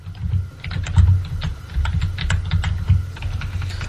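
Fast, busy computer keyboard typing with sharp clicking keystrokes in an uneven, steady stream over a low background hum, with no one speaking; someone is frantically clicking while looking things up.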